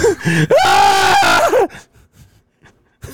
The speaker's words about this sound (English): Screaming goat.